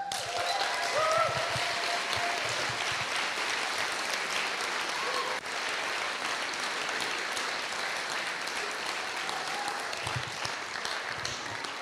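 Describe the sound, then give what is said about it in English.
Sustained audience applause, a dense, steady wash of clapping from many hands that holds at an even loudness for about twelve seconds with a faint murmur of voices mixed in. “Well, think about this as you applauding someone else in the room.”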